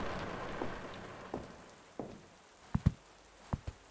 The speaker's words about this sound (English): It's overlooking the front porch. Is there anything outside? No. Just the rain and road.